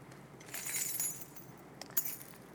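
A bunch of keys on a ring jingles softly for about a second, followed by a brief metallic clink, quiet, with no talking.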